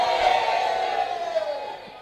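A large crowd shouts and whoops together in a loud, sustained roar that stays steady for about two seconds before tapering slightly at the end.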